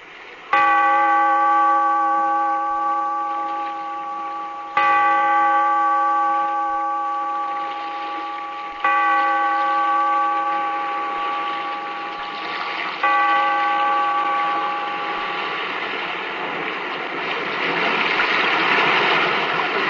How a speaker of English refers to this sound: Bellkeeper, toll the bell, so that all may know we are gathered again in the weird circle.